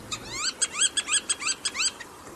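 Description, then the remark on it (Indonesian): A rapid series of about ten sharp, rising bird calls from black-tailed godwits, piping and nasal, repeated in a quick, slightly uneven rhythm, clear over faint background noise. “Burung pengunjung tetap lainnya ke Portugal adalah burung jenis godwit berekor hitam.”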